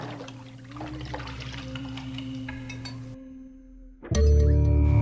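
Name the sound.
water running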